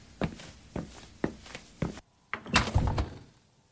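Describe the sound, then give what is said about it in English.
Four steady, muffled footsteps, then a fridge door is pulled open with a soft suction and rattle of contents as food is put in, and thumped shut again, no voices. “I'll just put it in the fridge.”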